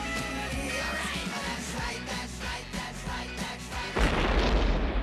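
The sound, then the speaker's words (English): A deep, rumbling boom of an explosion in the distance swells in near the end, low and muffled, rising over a dense bed of music with scattered sharp thuds. “you get that situation as well where they're in the park playing, and then you hear the explosion in the distance.”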